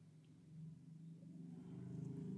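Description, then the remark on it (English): A low engine rumble grows slowly louder over a couple of seconds as a car passes, its deep hum swelling steadily with no voices over it. “Hear that car drive by?”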